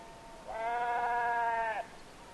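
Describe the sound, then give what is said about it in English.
A single sheep bleats once, a sustained wavering baa lasting over a second, on moorland overlooking the harbour at Arisaig on the west coast of Scotland, against a quiet open-air background with no talking. “We leave you this week on the west coast of Scotland, high on moorland overlooking the harbor at Arisaig, a place where seabirds and sheep seem to be in deep conversation.”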